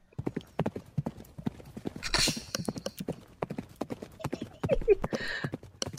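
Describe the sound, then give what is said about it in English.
Horse hooves clip-clop in a quick, steady rhythm, the sharp clacks repeating throughout, with a brief rushing noise and some voices mixed in. “Come, men, the horse, hurry up!”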